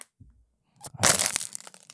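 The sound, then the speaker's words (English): A plastic water bottle is squeezed and crushed, making a loud, crackling crinkle that bursts out after a brief soft rustle and then fades into a few scattered pops. “I just wanted to crush that water.”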